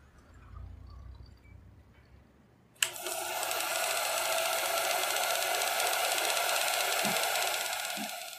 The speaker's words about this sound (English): And it is such a brilliant touch because it's this unsettling silence with the mechanical sound of the film reel, and it really it puts you on the edge of your seat as a viewer, and it gives you that sense of dread that he's going for